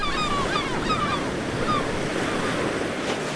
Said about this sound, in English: We've got a nice strong wind. We'll be home in no time.